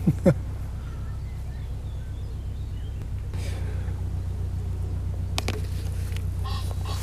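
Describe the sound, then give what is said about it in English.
A couple of loud, harsh bird squawks burst out right at the start, followed by fainter cries and clicks later, all over a steady low rumbling drone. “What the fuck was that? Some woodpecker or shit. What kind of birds are in here, man?”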